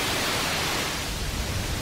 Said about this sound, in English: Noise is also provided as a sound source.